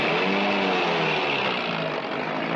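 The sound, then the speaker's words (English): A loud engine runs steadily throughout, its pitch rising slightly as it revs up, with a dense, roaring mechanical drone and no voices. “Start the engine.”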